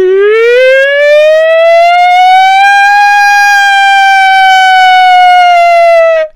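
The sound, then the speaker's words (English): A voice imitates a fire truck siren with one long, loud sustained wail that glides upward in pitch, holds steady, then dips slightly at the end before cutting off. “No, I was doing a fire truck.”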